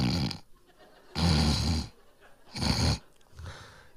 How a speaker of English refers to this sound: She's just doing her cute little snore.